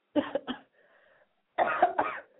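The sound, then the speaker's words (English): Two short bouts of coughing, each a quick double hack, separated by a second of faint hum. The coughs sound thin and band-limited, like they're coming through a phone line. “Who coughing? No, somebody coughing.”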